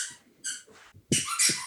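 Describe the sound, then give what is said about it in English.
A dog squeaks a rubber toy in a quick series of about four shrill, high-pitched squeals, the last one longer and louder than the rest, with no talking. “He's found a squeaky toy, so we should wrap this up.”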